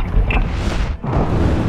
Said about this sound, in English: Evangeline's gaze shot up to the spanning window to witness a colossal explosion of raw fire. The upper half of Leviathan's western wall was decimated as molten lava sprayed voluminously over Abel Park.